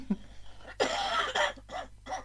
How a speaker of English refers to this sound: I really need to cough, but my Skype won't mute. So I'm just going to... Sorry.